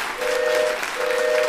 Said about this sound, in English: Wow, you have a train whistle. Yes, today is the 150th anniversary of the completion of the Transcontinental Railroad in 1869 at Promontory Point in Utah.